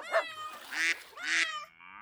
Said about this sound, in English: So the woman went out and bought hens, a rooster, and some little chickens, and she put them all in a coop next to the barn, and they crowed and clucked and squawked, making quite a racket.